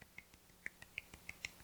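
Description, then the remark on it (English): A quiet golf clap: about ten soft, crisp claps in a quick, even rhythm, faint and alone with no talking. “Yay, golf clap.”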